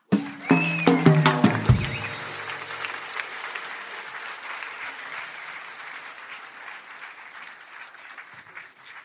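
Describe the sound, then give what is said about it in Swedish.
An audience at a live recording breaks into sustained applause for the evening's opening speaker, Lotta Lundgren: dense clapping with a few whoops and cheers over the first two seconds, then a steady ovation that slowly tapers without fully stopping. “En varm applåd för kvällens inledningstalare Lotta Lundgren.”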